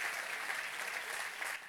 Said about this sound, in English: Come on, clap for us, man. I clap for you.